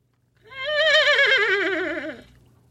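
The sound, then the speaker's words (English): A person imitates a horse's whinny with a loud, quavering neigh that wavers and slides downward in pitch for nearly two seconds, alone with no talking. “turned into a horse”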